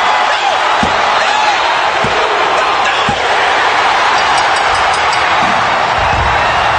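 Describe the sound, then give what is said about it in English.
A large wrestling arena crowd roars loudly and continuously as a wrestler wins the world title, a dense wall of cheering with a few dull thuds breaking through now and then. “what a pop for Mankind winning the world title”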